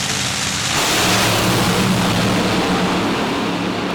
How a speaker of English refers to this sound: Ah, header flames from injected nitro cars and sparkling lights on the scoreboard. Oh, man. 5.09. Holy smokes. 278 miles an hour.